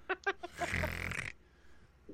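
A dog snores: a few quick snuffling snorts, then one long, raspy, rumbling snore that fades into quiet.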